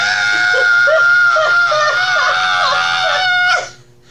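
A loud, sustained, high-pitched scream rings out for about three and a half seconds, wavering slightly in pitch before cutting off abruptly, with no talking.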